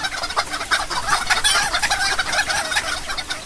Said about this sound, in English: Wow. That's a lot of chickens, man.